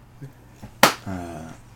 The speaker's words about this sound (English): I'd slap the shit out of you.